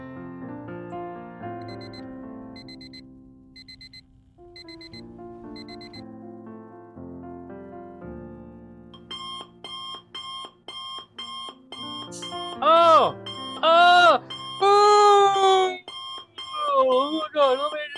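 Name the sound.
alarm clock ringing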